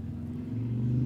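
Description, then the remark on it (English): A motorcycle passing by outside drones with a low, steady rumble that swells in loudness, its pitch dropping partway through as it passes. No one speaks. “Speaking of motorcycles, there goes one right now.”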